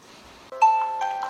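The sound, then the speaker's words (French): A morning wake-up alarm clock goes off with a bright electronic chime, a sustained ringing note followed by a couple of repeated tonal bursts, rising out of faint background hiss. “Mon réveil du matin est celui-ci.”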